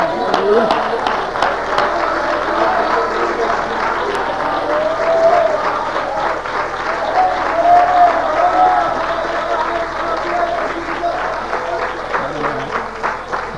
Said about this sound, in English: Let's clap our hands.